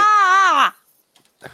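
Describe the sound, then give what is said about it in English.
A loud, high-pitched scream from someone outside holds for under a second with a slightly wavering tone, then drops in pitch and cuts off. Near-silence follows, with only a few faint, soft sounds. “Sorry, I got distracted because someone is screaming outside.”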